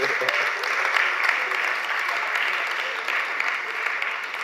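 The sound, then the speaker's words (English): Steady applause from the men in the audience fills the whole stretch, a dense, even wash of many hands clapping at a moderate level with no pauses and no voices standing out. “It appears all the men are applauding there.”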